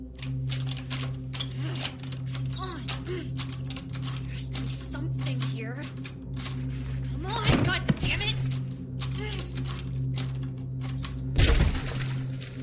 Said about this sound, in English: But through the dizziness, I hear Simone struggling with the door to the basement.